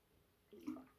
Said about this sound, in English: Sorry, drinking some water there.